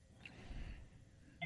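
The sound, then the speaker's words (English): An office phone gives a short electronic tone at the very end, with a faint blip earlier, over a low background rumble and no talking. “I don't know how to work an office phone, man.”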